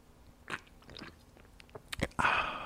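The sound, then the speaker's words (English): A sparkling lime drink is sipped: a few small clicks and mouth sounds, then a sudden bright fizzing slurp that lingers to the end, with no one talking. “Anybody's inquiring, I'm drinking a bubbly lime.”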